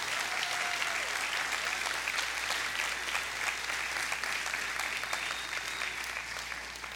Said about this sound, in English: The last time I was here, the applause was much louder and longer.